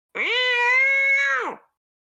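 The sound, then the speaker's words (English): A cat lets out a single loud, drawn-out yowl of pain on its own, holding a steady strained pitch before sliding down and cutting off. “The other cat, hearing the cry of his compatriot, is going to run towards your face, the calico.”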